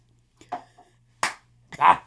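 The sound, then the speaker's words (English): A few sharp hand claps at an uneven pace, one crisp and loud, the last blending into a brief voiced shout, with a faint low hum underneath. “Oh, that'll be my, that's my clap.”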